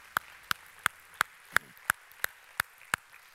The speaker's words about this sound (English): Can we give the Lord a hand clap of praise for what he's done in this place?